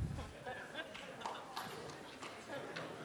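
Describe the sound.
Several sharp hand claps land in a loose, uneven rhythm, crisp and moderately loud, with a low murmur of voices underneath.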